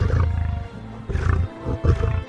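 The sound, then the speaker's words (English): A male lion, Prince, Lafayette's lion, with a big bushy mane and weighing 800 pounds, pacing back and forth in a cage, roars in deep, rumbling bursts, three heavy grunting pulses close together, loud with a throaty low growl and no talking. “It's a male lion with a big bushy mane. It's 800 pounds, and it's pacing back and forth.”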